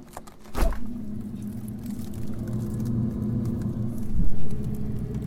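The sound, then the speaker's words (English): A freezer door pops open with a brief thump, followed by a steady low mechanical hum that drones on, with another soft knock near the end. No one speaks. “Here's my freezer.”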